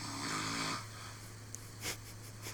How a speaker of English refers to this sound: No, that's my recording of you snoring, asshole. Of my snoring? Oh, dude, if we're going to play that game. I got 21 seconds and figured that would be enough.